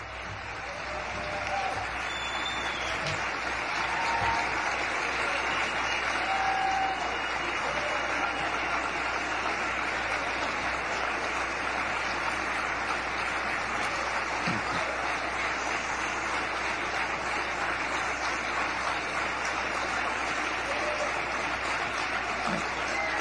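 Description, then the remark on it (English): Continuous crowd applause that holds at an even, moderate level for about twenty seconds at the end of a candidate's speech announcing they are leaving a political campaign, a steady wash of clapping with no voices standing out and no build or fade. “I guess I didn't listen to the whole clip and realize that 20 seconds at the end of it was the seal clap for the person that never had a chance to begin with.”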